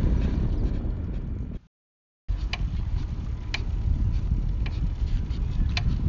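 A bicycle with panniers, ridden on a smooth road, makes a sharp, irregular knocking, a few crisp clicks every second or so over a steady low rumble of riding, with a brief drop to silence early on.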